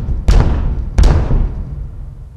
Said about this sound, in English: Three loud and crystal clear raps on the door caused Pilkington to fall silent.